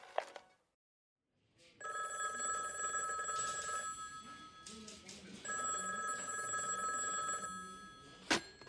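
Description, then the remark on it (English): An old-style telephone bell rings twice at a police station at night in 1979, each ring a bright, sustained metallic trill lasting about two seconds with a short pause between, loud. “Last night I was hard at work at the station, looking over possible motives, when the phone rang.”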